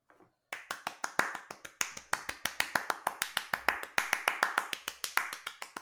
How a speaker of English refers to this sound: That clap was way too fast to be a sarcastic golf clap right there. Oh, I wasn't doing a golf clap. I was just kind of happy because someone else is doing all the heavy lifting for me.